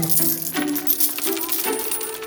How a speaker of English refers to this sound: All those coins. What is this about?